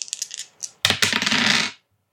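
A few light clicks and rattles, then a burst of hard clattering as dice tumble across a table and settle on a roll of 8, fairly loud, with no voices.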